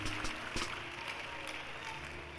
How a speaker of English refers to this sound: Give a big clap offering to Jesus. It's up. It's up.